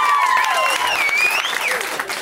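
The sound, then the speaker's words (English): An audience claps to show they know who Jonathan Taylor Thomas is, clapping steadily for about two seconds, a dense, loud wash of hand claps with a few high cheering or whooping voices rising and falling over it. “Just clap if you know who Jonathan Taylor Thomas is.”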